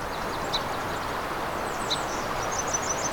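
A yellow warbler sings in the morning, its high, thin notes coming in short bursts and then a quick run near the end, over a steady rushing background noise.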